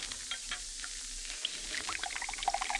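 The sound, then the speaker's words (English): Del Monte tomato juice pours steadily into a glass, a soft continuous gurgle that grows busier, with bright bubbly glugs rising in pitch toward the end. No one speaks. “Hey, Del Monte tomato juice. That's for me. Opener. Glass.”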